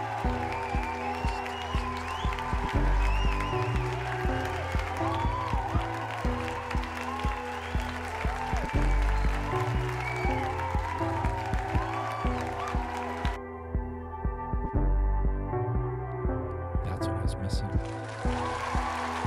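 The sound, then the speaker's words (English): A crowd applause sound effect: dense, steady clapping from many hands layered over a rhythmic backing bed, with the bright upper hiss dropping out near the end. “There's the crowd.”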